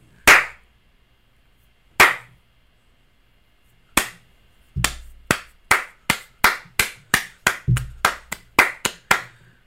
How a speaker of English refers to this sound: One clap, with a bunch of booty slaps.